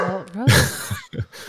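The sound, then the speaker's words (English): A dog named Rosie barks a few times: one loud, rough bark followed by two shorter, softer yaps, with a brief whine-like vocal sound just before. “It's the dog version of the wrap it up box.”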